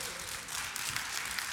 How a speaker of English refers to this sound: If there's anyone in here that's been married for 5 years or less. You could totally give them a round of applause, yes?